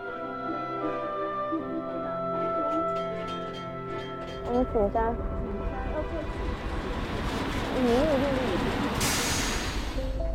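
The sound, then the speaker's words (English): A sightseeing tram rumbles along its rails on a century-old line with a steady low roar and rattle, joined near the end by a sharp hiss like an air brake, with tonal music or chimes over the opening seconds. “The view from the sightseeing trams has been transformed.”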